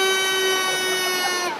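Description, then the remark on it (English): A loud horn blares in one long, steady note with rich harmonics, holding its pitch for over a second before wavering slightly as it cuts off, sounded along the prom during the Porty Regatta, a rowing race of St Ailes skiffs. “As you walk along the prom this morning, don't be surprised if you hear cheering and the sounds of whistles and horns.”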